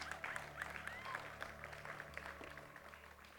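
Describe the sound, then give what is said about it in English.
A church audience applauds its worship team in a steady, dense wash of clapping that fades slightly toward the end, with a few faint high-pitched whoops mixed in. “You can applaud for our worship team.”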